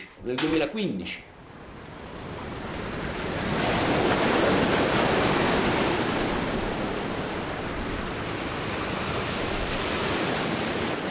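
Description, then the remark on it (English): Steady waves wash and roar in a broad rushing surge that swells and holds, on the Straits of Messina between Calabria and Sicily in the Mediterranean, with a brief voice heard only at the very start. “Dozens of container ships sail each day along the narrow ribbon of water that flows between Calabria and Sicily.”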